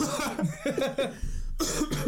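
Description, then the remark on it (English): A person coughs repeatedly, a run of harsh, throaty bursts followed by a brief pause and another fit of coughing. “Yeah, keep coughing on the pod.”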